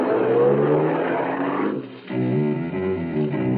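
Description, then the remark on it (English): A small sedan's engine idles roughly, dips briefly, then revs up with rising harmonic tones as the car pulls away from a supermarket parking lot, loud, with no voices. “I found a small, inconspicuous sedan with its keys tucked in the sun visor above the wheel. I got in and drove off.”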